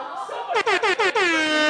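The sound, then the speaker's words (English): A voice mimics an air horn: a rising honk, then four quick loud bursts, ending in one long sustained blare, brassy. “do your air horn? Do your fucking air horn!”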